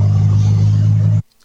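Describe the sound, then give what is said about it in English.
Loud, steady rumble of car engines with a broad hiss of road noise, holding constant for about a second before cutting off abruptly into near silence. “This is actually the video of cars are going by.”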